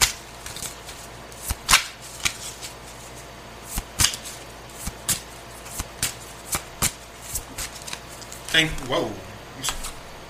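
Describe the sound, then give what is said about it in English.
Playing cards are shuffled and dealt as three more cards are requested: a string of sharp, crisp snaps and flicks at an irregular pace, with a brief rippling riffle near the end and a faint murmur of voice underneath. “May I have three more cards, please?”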